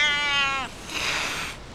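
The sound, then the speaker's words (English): A terrified cat lets out a strained, fearful meow as it leaps from a rooftop onto a boat amid rising floodwater, a long harmonic wail that breaks into a rougher, higher cry before trailing off, with no talking. “The water continued to rise, and it slopped over the highest rooftops, where a terrified cat leapt onto the boat.”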